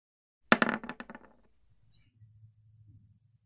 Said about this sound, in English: Actually, let me roll a couple dice and see if he survived.